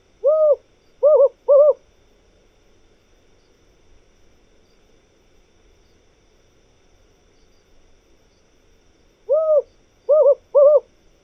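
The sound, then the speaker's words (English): A desert owl (Strix hudurumi) hoots in two matching phrases of three or four notes each, a short pause, then repeated after several seconds of quiet; clear against a faint low background hum. “Take the desert owl, Strix hudurumi.”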